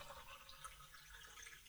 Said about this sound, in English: I'm going to pour myself another coffee.